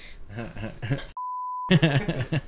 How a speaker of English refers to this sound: Beep beep beep.